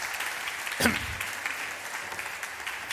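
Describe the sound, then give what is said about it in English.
An audience applauds steadily, a dense, crackling wash of many hands clapping at once, with one sharper accent early on and no voices standing out. “And can we give her a big applause for staying...”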